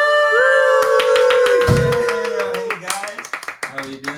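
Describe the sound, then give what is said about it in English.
Studio audience applause prompted by a blinking applause sign as a guest is introduced: a dense, steady patter of many hands clapping that swells and runs for several seconds, opened by a rising cheer and mixed with excited whoops and voices. “A podcast, so you can't see it, but there's an applause sign that's like blinking right now. There's actually an audience.”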